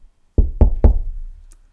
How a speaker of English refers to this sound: Listen, I'm standing at the door, knocking. If you hear my voice and open the door, I will come in to you and eat with you and you with me. So as He says, He knocks on the door.